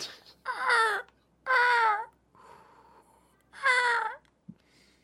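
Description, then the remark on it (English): Three loud, wailing seagull calls from a professional recording played on a soundboard, each about half a second long and slightly wavering in pitch, separated by short pauses with a faint murmur and a brief click between them. “No, it's a professionally recorded seagull from our soundboard.”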